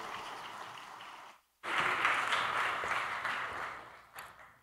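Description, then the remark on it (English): A crowd at Journey breaks into steady applause to invite a guest speaker up, a dense patter of many hands clapping at once, briefly cut off before swelling back up and continuing loudly with no one speaking. “But if we can give him a round of applause, we invite him up.”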